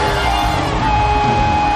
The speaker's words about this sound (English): Listen. Listen. Some of you, the way you are shouting, it is... I want you to shout. I want you to jump. I want you to scream. Somebody shout!